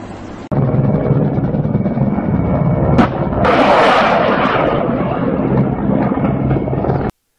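Mortar fire bursts near a car driving down a highway as its driver tries to dodge it: a sharp crack, then a loud roaring blast, both over a steady, heavy engine rumble. No one speaks.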